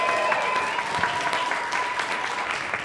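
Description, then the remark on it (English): An audience applauds steadily as a panelist is introduced, a dense wash of many hands clapping at an even, sustained loudness, with a faint tonal hum running underneath. “Thanks, everyone, for applauding and for coming.”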